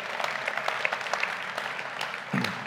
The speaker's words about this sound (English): Can we maybe first of all just thank God, maybe through applause? Okay. It's worth it. Perfect for that moment.